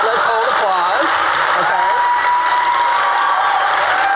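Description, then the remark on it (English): An audience applauds in a dense, steady wash of clapping that holds loudly for the whole stretch, with a few voices calling out over it near the start. “So let's hold applause.”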